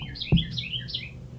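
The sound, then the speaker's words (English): A bird chirps in a quick run of high, bright tweets over a low background hum, with a single soft thump early on. Fairly quiet, no talking. “Wow, where is that bird? You hear the bird?”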